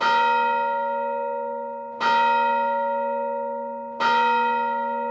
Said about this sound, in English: The lunch bell! I've got to get in there before the tater tots are gone.